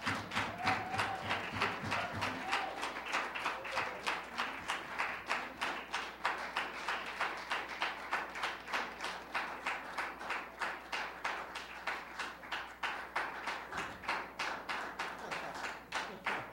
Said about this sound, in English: Would you give our student staff a round of applause?